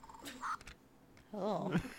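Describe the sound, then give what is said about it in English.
A squeaky novelty cat paw toy meows as its trigger is pulled back softly: a short electronic-sounding mew followed by a longer, wavering meow with a rising and falling pitch, quiet overall. “And if you pull it softly, you get the meow.”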